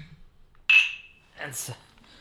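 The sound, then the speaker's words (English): A single bright glass clink rings out sharply and fades over a moment as glasses of single barrel Huber's Rickhouse Select bourbon are clinked in a toast, followed by a brief murmur of voices. “That's what we're drinking. By the way, cheers. Cheers.”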